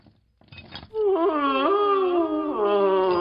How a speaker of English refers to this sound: That sounds an awful lot like ghostly moaning. That or somebody ate Taco Bell.